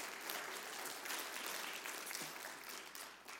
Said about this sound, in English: Give the Lord a hand clap of praise for his word today.